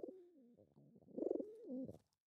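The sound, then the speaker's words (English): A pet bird coos into the microphone in a soft, warbling run of low, rounded notes that swell louder midway, then fade out; no one speaks. “He cooed into the mic.”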